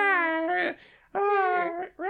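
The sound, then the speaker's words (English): A person imitates a bobcat kitten's cry with two drawn-out, high, wavering mewling wails separated by a short pause, then the start of a third. Fairly loud, with no other sounds. “Look, if we have to say it out loud, we could, like, you know, have the bobcat doing, like, an... I was going to say a roar, but that probably doesn't help our case. An adorable baby one doing a little...”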